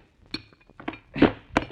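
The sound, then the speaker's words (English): Someone chips a hole in a newly built part of a wall: a handful of sharp, irregular knocks and cracks, four standing out louder, with faint gritty clinks of debris between them and no voices. “How big a hole are you going to knock on the wall before you're satisfied you've wasted enough of my time?”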